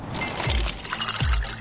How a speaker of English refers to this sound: But what about those sounds? Those are the sounds of a brand new ice maker dropping cubes into a fresh glass of water, making this the sound of savings on top brand appliances.